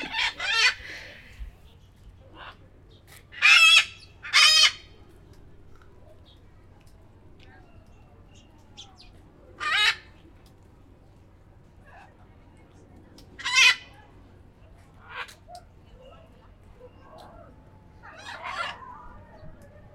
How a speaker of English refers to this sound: So as you can hear, we did manage to stop by the parrot enclosure on our way out.